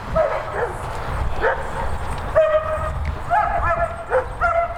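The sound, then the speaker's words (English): Dogs bark and yip repeatedly in short bursts, with some drawn-out whining cries in between, fairly loud over a low background rumble. “Sorry about these dogs here. I'm sure it's probably pretty loud.”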